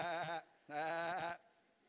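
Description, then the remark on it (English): Two wavering, harmonic bleats from an audience imitating sheep, a short one then a longer one after a brief pause, fairly loud with a crowd-like blend. “Did anybody hear somebody not actually sounding like a sheep, but more like a goat when we did that?”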